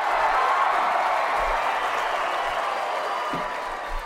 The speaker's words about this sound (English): You better find some cheers for that.